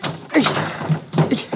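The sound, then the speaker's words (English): Someone wrestles with a stuck car door: two heavy, dull thunks and a scrape of metal as it's yanked and shoved, with faint voice-like sounds mixed in. “Here, I'll get this door open.”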